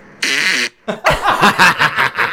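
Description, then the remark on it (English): A loud fart from a man: one long buzzy blast, a brief pause, then a rippling series of sputtering bursts trailing off over about two seconds. “That was my ass, … just farts”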